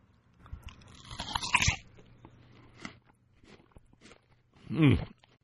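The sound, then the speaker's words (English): A loud crunch as teeth bite into a very firm, crisp new-crop apple, followed by quieter chewing sounds and a second sharp crunchy bite near the end. No one speaks. “It's an absolutely delicious piece of fruit, and I'm going to try it now so you can hear the crunch again.”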